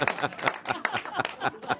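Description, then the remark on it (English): A studio audience on the campus of Moody Bible Institute claps in a quick, uneven patter of sharp bursts, with a few voices murmuring underneath the applause. “You have to clap.”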